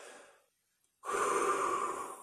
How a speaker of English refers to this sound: Blowing all the air out, pushing your stomach out as far as you can, and then breathing in equally as deep, not utilizing any of the muscles from your upper body and back. Really concentrate as you inhale and you exhale.